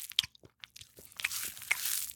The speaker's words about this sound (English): Giraffes eat plants that are unreachable to other large herbivores. They use their long necks and height to their advantage to munch happily away at the leaves of their choice, totally undisturbed.